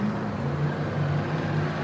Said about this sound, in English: you could hear the roar of these vehicles